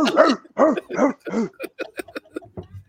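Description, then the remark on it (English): A person imitates a dog, with four loud, drawn-out barking yelps followed by a quick run of short, choppy yips, with no other talking. “I need to go underneath him and be the dog.”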